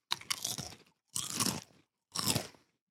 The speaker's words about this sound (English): Stop with the fucking chips, dude! Stop with the crunching in the fucking microphone!